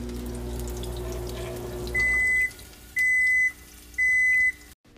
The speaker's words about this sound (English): Microwave dinging.